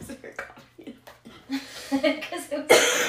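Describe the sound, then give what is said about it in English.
Bursts of coughing mixed with breathless laughter, uneven and spluttering, building to a harsh, loud hack near the end. “Literally of crying of laughter and coughing at death.”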